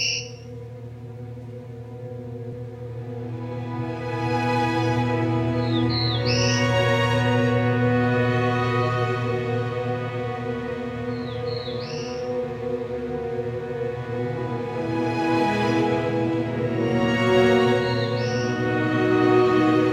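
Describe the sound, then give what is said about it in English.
A small woodland songbird of the understory of mature woodlands, found from the northern Great Lakes east to the Atlantic, sings a relaxed, lazy-sounding song like 'beer, beer, bees': short high phrases that rise at the end, repeated about every five seconds over a steady low humming background. “They have a relaxed, perhaps lazy sounding song that can sound like beer, beer, bees.”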